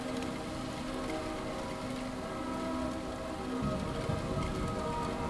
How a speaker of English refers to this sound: the soundscape of our temporary studio today of Radio Yerevan. Far, far, far, far in the rain, in the wind.